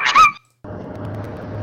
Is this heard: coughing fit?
no